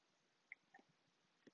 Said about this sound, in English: Coffee sip.